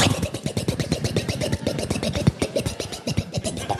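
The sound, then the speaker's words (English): A ski boat engine turns over and runs with a rapid, rough, pulsing chug, loud, its rhythm uneven at first before settling into a steady churn. “I'm going to start out the boat.”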